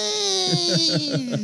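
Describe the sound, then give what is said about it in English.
A voice imitates Ronnie the Ronto screaming in pain after being hurt on the sensitive bump on its neck: a loud, strained, wailing cry that holds on and slowly sinks in pitch, pulsing in quick wavering throbs for about a second and a half. “So the Ronto just screams in pain. What do you think that sounds like?”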